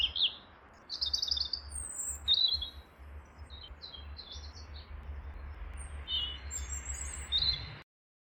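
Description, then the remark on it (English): Parrots in Madrid, Spain, chirp and squawk in scattered, overlapping bursts over a steady low rumble, several birds calling with no one talking. “Parrot condos”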